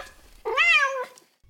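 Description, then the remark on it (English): A cat lets out one loud, drawn-out, pleading meow that rises and then falls, crying desperately for food as its owner opens a can to feed it, with no talking around it. “When I feed my cats, I can't even get the can all the way open before I'm besieged by the sound of desperate cries.”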